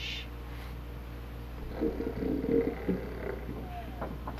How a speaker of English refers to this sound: Shh. Can you hear him snoring?